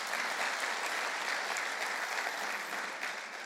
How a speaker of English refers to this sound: Give him a clap.